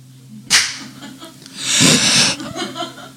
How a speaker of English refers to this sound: I'm going to put a clap here so I remember to edit that Ollie part out.